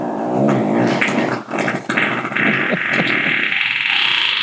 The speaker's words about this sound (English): Damn, that was a raunchy-ass fart.